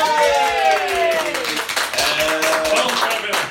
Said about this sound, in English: Applause.